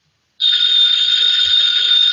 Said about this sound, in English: Ladies and gentlemen, that phone bell means adventure. Hello? Hello? The young man answering the phone is Archie Goodwin